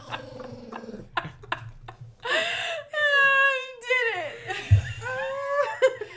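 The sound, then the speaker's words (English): A dog named Peter whimpers and grumbles while being rubbed, giving a run of high, wavering whines broken by short breathy bursts, with low growly rumbles underneath in the latter half. “I think if you rub him too hard, he just starts growling.”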